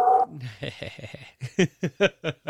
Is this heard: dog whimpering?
yes